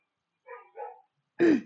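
A dog gives two short, muffled grumbling woofs, then one loud, sharp bark close by, with no talking.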